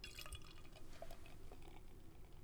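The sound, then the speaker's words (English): A golden, butterscotch-colored, slightly hazy drink is poured into a glass, a steady, quiet trickle of liquid with small splashy drips and gurgles throughout, no voices. “Ooh, what a delightful pour.”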